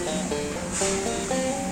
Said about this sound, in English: If you were a black child in 1840s Missouri, in order to get to school, you'd have to come here, to the river shoreline. The city of St. Louis sits right on the Mississippi River.